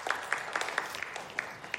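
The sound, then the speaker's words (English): A scattered round of audience clapping from people asked to clap if they got frustrated during a rubber-ball activity: a handful of sharp, uneven claps over a soft bed of lighter patter, moderately loud, with no voices. “Clap if you got frustrated while you were doing that.”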